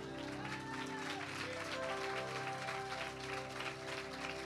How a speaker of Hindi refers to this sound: आइए एक बार फिर से अपने महान खुदावंत के लिए ताली बजाएंगे.